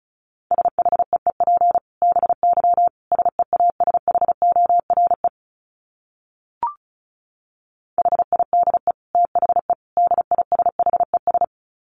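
Rapid Morse code beeping at 35 words per minute, at a steady mid pitch, fast keyed tones in bursts, broken by a pause with a single short click before the beeping resumes. No voices.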